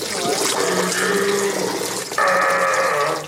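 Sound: man urinating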